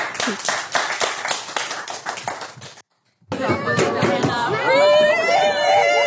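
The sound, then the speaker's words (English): An audience breaks into loud, steady applause, many hands clapping densely for a few seconds before it cuts off abruptly; after a brief silence, voices talk over a busy background. “So if we could have a warm round of applause”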